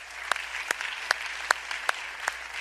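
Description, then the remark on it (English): A church audience applauds in a steady, dense wash of clapping, celebrating 1,551 people who followed Jesus in baptism, with one pair of hands standing out in sharp, evenly spaced claps about every half second. No one speaks. “We can applaud that.”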